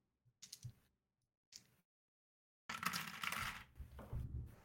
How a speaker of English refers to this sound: Oh, a little stuck up in the dice tower. That's all right. Jammed up. We had a traffic jam in the dice tower. There we go.